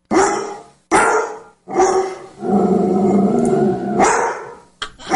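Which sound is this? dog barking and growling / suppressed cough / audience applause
dog barking and growling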